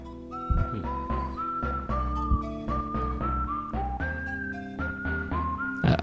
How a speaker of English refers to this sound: There's these timpanis with whistling. I like the mood of this song.